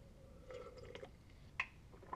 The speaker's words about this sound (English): Sip of water.